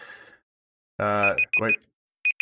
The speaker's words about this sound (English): Quite the small timer went off. Yes, it did. We're out of time.